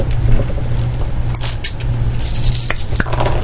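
Six dice are rolled in a tabletop game, clattering and rattling, with a handful of sharp clicks scattered across a few seconds over a steady low engine-like hum. No one speaks.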